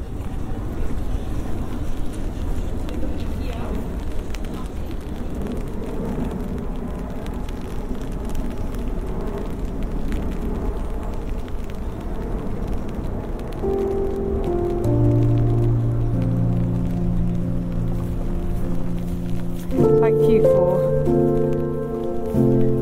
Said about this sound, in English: Oh, it's really coming down now. I might need to get my umbrella out.